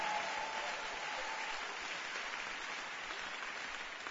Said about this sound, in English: Are you clapping your hands for Jesus, somebody?